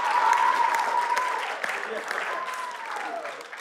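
Audience applause fills the room, a dense, steady wash of clapping that holds for a few seconds and gradually eases, with a faint whistle or cheer rising over it.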